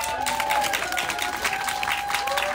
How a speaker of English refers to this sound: There was a slideshow with historical pictures of downtown San Francisco, a hazy and suspenseful stumble down some creepy building stairway, a scary monster hiding in the halls of school, with giggles and applause coming from the audience.